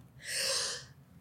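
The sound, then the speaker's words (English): A single sneeze bursts out in a sharp, breathy blast lasting about half a second, then trails off into quiet background noise, with no talking around it. “I have to sneeze.”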